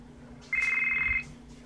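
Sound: phone ringtone ringing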